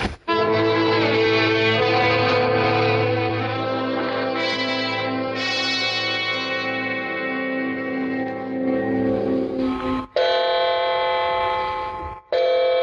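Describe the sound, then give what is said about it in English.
A clock strikes nine o'clock with resonant, ringing chimes, each tone sustaining and overlapping into a dense reverberant wash before a couple of final distinct strikes. No one speaks. “It's 9 o'clock, honey.”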